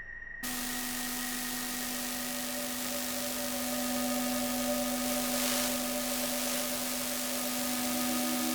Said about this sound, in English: Sounds like random static. I don't think it is. I'm already seeing patterns. Are you saying this is a transmission? I think so. And why else would the device have a wire to the surface with highly directional 8 gigahertz emission?